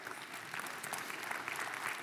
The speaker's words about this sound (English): The authority, you can clap for that.